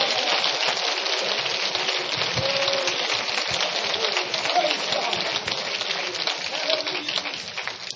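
An audience claps hands together, a dense, steady wash of many overlapping claps that holds at an even, fairly loud level for the whole stretch, with no voices standing out.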